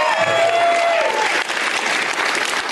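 An audience breaks into steady applause, a dense wash of clapping that stays loud throughout, with a few cheers and shouts mixed in at the start.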